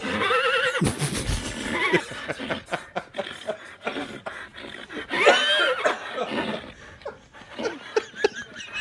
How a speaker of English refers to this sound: What the fuck is that? 10 hours of horse sounds. What sound is that?